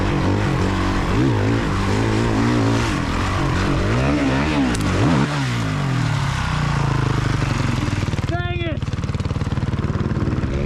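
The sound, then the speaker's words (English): A loud dirt bike engine revs up and down in repeated sweeps as the rider crashes into a dugout, then settles into a steady roar as if after a tumble; someone briefly exclaims near the end. “we're going to roll a clip right now, but you wadded yourself pretty good into a dugout recently.”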